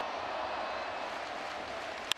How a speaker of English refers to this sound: Here is Upton, and the crowd coming to life.